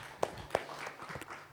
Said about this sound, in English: So great to have you here this morning. How you guys doing? Give yourself a round of applause. You came here in the rain.